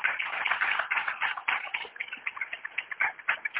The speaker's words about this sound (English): Just clap your hands one more time.